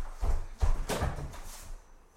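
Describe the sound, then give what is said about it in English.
A door swings and bumps shut, with a couple of low thuds and a brief rattling scrape, followed by quiet room tone. “You're gonna let them in with the door wide.”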